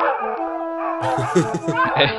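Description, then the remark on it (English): A dog howls in a long, steady wail, then a louder burst of overlapping barks and yips from several hounds fills the rest, busy. “No, but you can release the hounds. Release the hounds!”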